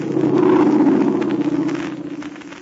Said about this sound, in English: It was somebody who means no good to any of our friends. We'll hear from that plane again, even though it may not land in ruined Min Chow.